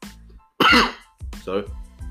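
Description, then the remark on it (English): A loud throat clearing followed by a short cough and a second rough clearing of the throat, all within a couple of seconds, with a low voiced hum between bursts. “Excuse me, I'm having a bit of a cough.”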